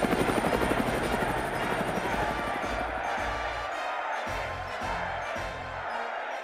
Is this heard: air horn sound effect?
no